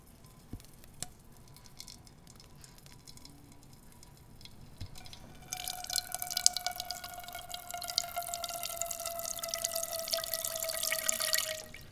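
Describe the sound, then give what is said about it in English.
Thick blueberry simple syrup dripping and trickling through a strainer. After a few quiet seconds with faint clicks, a steady, splashy flow starts and keeps going with a hollow ringing tone. “Simple syrup, our blueberry simple syrup, through our strainer.”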